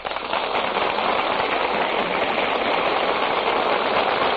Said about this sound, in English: That applause you hear, ladies and gentlemen, tells you that our stars have just come out before the footlights and taken their places at the microphones.